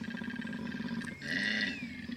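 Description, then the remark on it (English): A loud, guttural bear roar, rumbling low with a harsh, raspy upper edge that swells midway and holds for a couple of seconds, with no talking. “Turns out it's a drap bear.”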